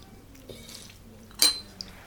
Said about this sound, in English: I need a sip of my drink for this.